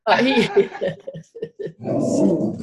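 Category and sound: animal, big dog barking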